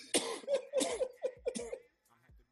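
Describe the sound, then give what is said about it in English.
A run of about five harsh coughs in quick succession in a closed room, each a short raspy burst, followed by a brief pause and the start of another. “Hey, nigga, we in a closed fucking room. You gotta stop this coughing shit, nigga.”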